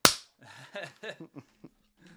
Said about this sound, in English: And I'll give you the clap.